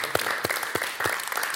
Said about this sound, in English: That's awesome. Let's give Harold a round of applause.